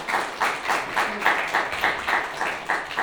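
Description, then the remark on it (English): Audience applause for four volunteers called on stage for a magic act, with a steady, rhythmic beat, the claps landing in regular pulses about three per second at a moderate level, with no talking over it. “All right, a round of applause for our 4 volunteers.”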